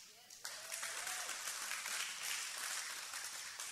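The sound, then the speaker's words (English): A church audience breaks into sustained applause during a sermon after the pastor says a duly qualified woman can take his job, a dense, steady wash of many hands clapping that swells quickly and carries on evenly for several seconds without any talking. “For the rest of you that didn't clap, let me explain to you something.”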